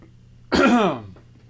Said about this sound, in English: Just clear my throat here first.